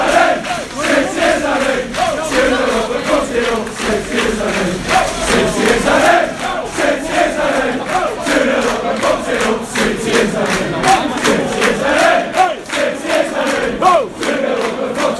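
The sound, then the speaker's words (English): Football fans chant loudly and continuously in a stadium concourse, many voices rising and falling together in a rhythmic, sing-song melody with sharp claps or stamps punctuating the noise. “We're in the concourse, no one's letting us out, but no one's that bothered, as you can hear.”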